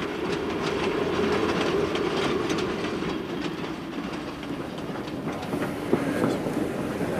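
A passenger train running from Stagville to Vermissa, in Pennsylvania's Vermissa Valley, rolls steadily along the rails, a constant loud rumble layered with faint rhythmic clickety-clack and occasional metallic rattles, with no voices.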